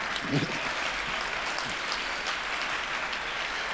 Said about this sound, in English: Also, y'all did some, also, yeah, applaud yourself.